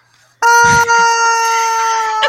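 A rubber chicken toy, squeezed by the neck, lets out one long, loud, nasal squawk that starts abruptly and holds a steady, buzzy high pitch for about two seconds before cutting off.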